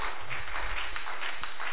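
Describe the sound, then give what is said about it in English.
A crowd claps together in answer to a preacher's call to clap hands and shout amen, in a dense, steady wash of hand claps that stays fairly even throughout, with no distinct single claps standing out and no clear voices. “Clap your hands and shout an amen.”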